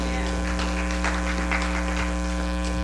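A church audience gives a clap offering to thank the worship leader, a steady wash of many hands clapping for a few seconds, partly buried under a loud, constant electrical hum with buzzing harmonics.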